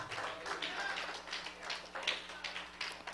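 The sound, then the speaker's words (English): A church audience claps together during a sermon, a dense, steady patter of many hands with faint murmuring voices underneath, fairly soft throughout. “Whoever want to get blessed from the word, clap your hands.”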